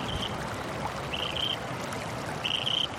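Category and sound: nature, flowing stream water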